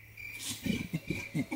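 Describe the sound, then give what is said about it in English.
An orangutan call: a series of low, throaty pulsing hoots, about five in quick rhythm, moderately loud, over a faint steady high-pitched hum. “Oh, okay, so that is an orangutan.”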